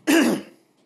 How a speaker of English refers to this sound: So I'm so sorry to cough in here.